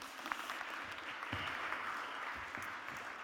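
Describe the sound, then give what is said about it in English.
Steady applause from a group, a dense wash of many hands clapping at an even level for a few seconds, with a few sharper individual claps standing out. “Round of applause.”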